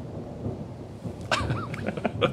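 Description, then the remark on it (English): Low, rolling thunder rumbles steadily in the background, muffled, with a few brief higher-pitched sounds breaking in over it during the second half. “Our movie with a sweet thunder sound in the background.”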